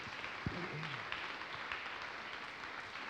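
A crowd claps steadily for about three seconds for a man as he comes up to help pray, a dense, even patter of many hands with no distinct rhythm, and a brief low thump and murmur near the start.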